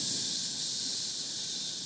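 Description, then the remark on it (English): In a studio, a voice imitates a hiss: a steady, sharp, breathy sound that holds at an even loudness for about two seconds without a break, with no words spoken. “I'm getting like a hiss.”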